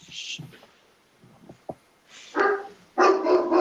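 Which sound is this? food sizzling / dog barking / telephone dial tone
dog barking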